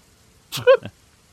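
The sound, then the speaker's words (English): A single short, mock cat sneeze made by a human voice for a character, Jax, after he sniffs some herbs: a breathy burst flowing into a brief squeaky vocal tone, heard alone against quiet. “At some point, Jax is looking through some herbs and sniffs one with his quite delicate sensibilities. Just starts doing the cat sneeze.”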